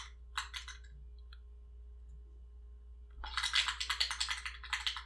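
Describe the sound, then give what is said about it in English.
A can of spray paint being shaken: a brief rattling burst, a pause, then a longer run of quick, rhythmic metallic clacks over a low steady hum. “Oh, you're shaking up a bottle of spray paint. That is a bottle of spray paint.”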